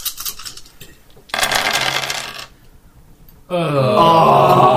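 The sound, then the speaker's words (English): A quick burst of clattering as seven dice tumble across a hard table in a board-game knowledge roll to open a vault. A pause follows, then an excited voice exclaims loudly. “Knowledge roll of 6+ to open the vault, boys and girls. With my 7 dice.”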